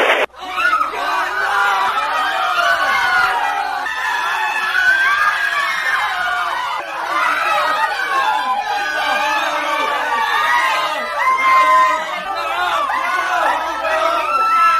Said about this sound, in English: As the sound of gunshots and screams died down in Khartoum